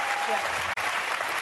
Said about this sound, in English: We agree. That's what gets the applause finally.